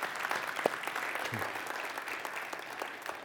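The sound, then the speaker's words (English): A church audience breaks into steady applause to welcome a new member into the church family, a dense wash of many hands clapping at an even, moderately loud level throughout, with a brief low vocal sound mixed in. “You can clap.”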